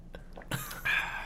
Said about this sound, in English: You'll hear a slurp. Sorry, guys. I'm just slurping over here.